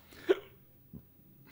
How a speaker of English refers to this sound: Somebody's Looney Tunes drunk. All these hiccups and burping.